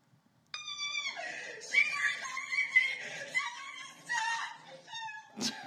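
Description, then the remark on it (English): Loud, high-pitched screaming from a woman on the floor, a run of shrill, strained wails that rise and break for about five seconds, with no talking. “She starts screaming. And then she throws herself on the floor.”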